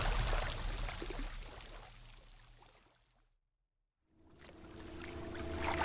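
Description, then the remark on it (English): A rowboat is pushed out onto lake water at night in the rain, with a steady watery rush that fades into a brief silence, then returns with sloshing and a faint low hum. No one speaks. “Severing the thick rope that secured it, we pushed the boat out into the lake under cover of dark and rain.”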